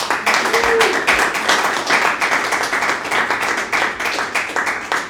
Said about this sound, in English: Out of our Chinese Whispers quiz, you got 2 out of 2 smaller questions right. A big round of applause.